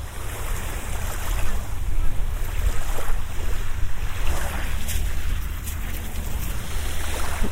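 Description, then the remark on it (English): Gentle water of a calm, flat sea washes steadily along a beach shore in bright sunshine, a soft continuous hiss of small waves with a low wind rumble underneath and no voices. “The sea is really flat today. And just glistening in this incredible sunshine.”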